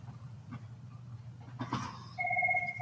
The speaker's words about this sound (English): Sorry, my phone.